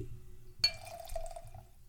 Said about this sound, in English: Like how I put that in front of the mic so you guys can hear the pour. I'm going to keep that in the recording.